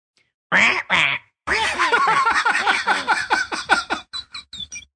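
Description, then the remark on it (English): A person imitates a parrot: two quick squawks, then a long, loud run of rapid, raspy chattering that breaks into short, clipped chirps at the end. “For those who don't speak parrot”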